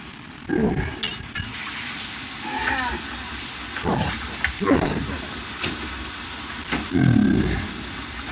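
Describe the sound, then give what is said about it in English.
A voice imitating a monster gagging and retching on the stinky smell of dishes in a series of rough, guttural bursts, fairly loud, over a steady background hiss. “Can you believe that a monster is gagging on stinky smells?”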